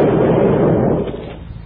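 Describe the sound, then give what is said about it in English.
A loud, booming blast from an automatic cannon, with a dense rumbling roar that fills the low range, holding steady for over a second before slowly beginning to fade. No voices are heard. “But, you know, we said it's automatic. We can't control that cannon.”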